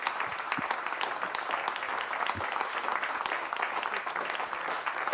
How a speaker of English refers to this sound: This is Donald Trump. He's getting ready to go into Palestine, Ohio, right here. They're applauding him.